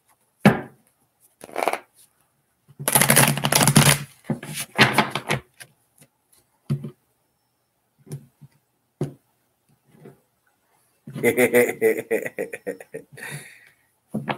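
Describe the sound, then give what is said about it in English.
Two bursts of rapid papery riffling as tarot cards are shuffled, with a few soft taps and flicks between them; fairly loud. “You have two more shuffles, Eleni. Two more shuffles.”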